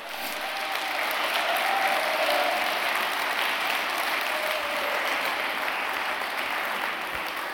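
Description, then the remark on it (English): An audience claps steadily for the Lord for several seconds, a dense, even wash of applause that holds a constant loudness throughout, with no voices rising above it. “And yeah, give the Lord a clap off.”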